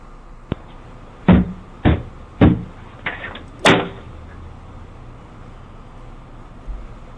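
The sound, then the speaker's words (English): Heavy pounding on a door: about five loud, booming thuds in an uneven burst, then a couple of fainter knocks, over a low background rumble with no voices. “Beating on my door like this.”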